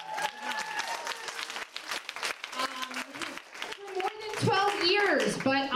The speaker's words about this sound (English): And you guys can clap it up, because I didn't.